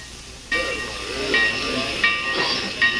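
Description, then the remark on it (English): A steam locomotive hisses loudly at the station in Pineville at night, a steady rush of steam that bursts in abruptly and keeps going, swelling in brief surges, with no voices. “When I got off the train in Pineville last night, two men were waiting for me.”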